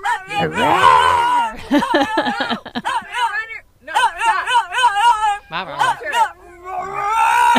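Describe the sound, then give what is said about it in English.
Loud voices imitate dogs, trading gravelly growls and long wavering howls in a continuous stretch with brief pauses, sounding like several people joining in. “Then they get growly.”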